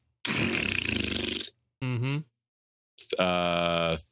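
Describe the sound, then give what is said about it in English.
A voice imitates farting: three loud blasts, first a long sputtering raspberry, then a short wobbling squeak, then a longer buzzing toot, with brief silences between. “They will just fart and shit all over themselves, is what it sounds like.”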